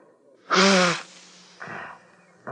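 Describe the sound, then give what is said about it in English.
A crying man sitting at the edge of a goldfish pond blows his nose into a borrowed handkerchief: a loud, honking blow with a buzzing, tonal edge, then a softer breathy blow and a brief final snuffle. No one speaks. “I loaned you my one good handkerchief this morning. I got it here in my pocket. Be my guest. Blow your nose.”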